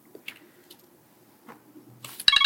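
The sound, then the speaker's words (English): After a stretch of quiet room noise and a few soft knocks, a timer alarm suddenly starts ringing with loud, rapid, high-pitched beeps right at the end. “Oh, and there is our timer.”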